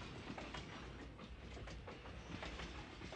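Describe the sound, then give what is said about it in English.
A Disneyland Railroad train at Disneyland rumbles and clatters steadily along the rails, a continuous dense rattle with faint rhythmic clicks from the wheels, heard from on board. “Please remain seated while the train is moving, keeping your hands and arms inside the car.”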